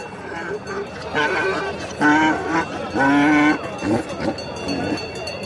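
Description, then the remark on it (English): Sheep bleat at a busy livestock market on a hill where donkeys, sheep and goats are inspected and offered for sale: two loud, drawn-out calls over a steady murmur of voices and scattered animal noises in the background. “On a hill on the other side of the encampment, there are donkeys, sheep, and goats being inspected and offered for sale.”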